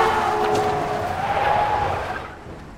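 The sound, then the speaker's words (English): Car tires skid with a loud, sustained high-pitched squeal that slides slightly downward over a couple of seconds, backed by engine and road rumble before fading out. “Oh, you didn't know I was in a car.”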